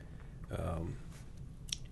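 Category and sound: food or drink, sipping a drink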